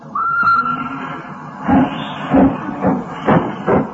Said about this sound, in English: Hissing and snorting and growling and grumbling. Out of the station, the train comes a rumbling, puffing out smoke and white steam in the dark